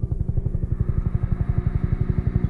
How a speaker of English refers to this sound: She says that she gets this awful feeling like she's about to fall off a cliff. She says, as soon as I hear helicopters, I fall back into that nightmare.